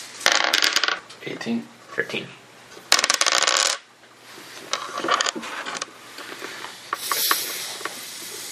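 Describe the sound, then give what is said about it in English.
Four dice clatter and tumble across a hard tabletop during a tabletop game, in several loud bursts of rapid rattling clicks, with brief quieter pauses and faint voices in between. “Did you roll 18?”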